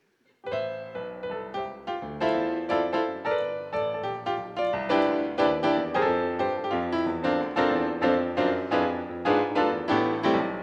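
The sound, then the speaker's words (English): Piano keys played in a steady flowing run of chords and notes, rich and fairly loud, each strike decaying into the next with no voices over it. “Go ahead and tickle them keys.”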